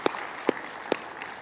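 Audience applause at a church service for two people who shared their experience: a steady wash of many hands clapping, with three sharp, louder claps punching through at roughly even intervals. No one speaks over it.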